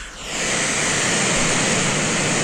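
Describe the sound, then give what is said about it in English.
Brown noise swells in over the first half second, then holds as a steady, loud, unbroken rush with no other sounds and no voices. “Here's brown noise.”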